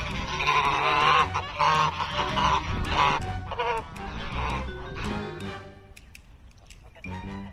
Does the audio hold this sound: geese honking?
yes